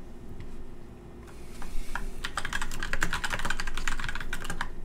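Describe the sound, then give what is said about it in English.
A quick flurry of small hard clicks and clatters as two dice, one red and one purple, are rolled across a table for a game check, rattling densely for a couple of seconds over a low background hum. “So one red, one purple. Rolling dice.”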